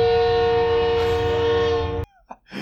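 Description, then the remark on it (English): A passing train sounds one long, loud, steady horn blast, which cuts off abruptly after about two seconds, leaving a few faint, brief sounds behind. “There's that train.”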